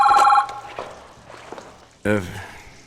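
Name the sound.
telephone bell ringing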